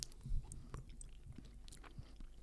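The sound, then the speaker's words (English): Sticky chewing of a chewy nougat chocolate bar, a Cadbury imitation of a Mars bar, with irregular soft mouth clicks and squelches repeating steadily throughout and no one speaking. “Too much chewing.”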